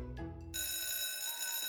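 A school bell rings loudly, a bright, metallic, continuous clang that starts abruptly after a brief low-pitched lead-in and holds steady without pause to the end.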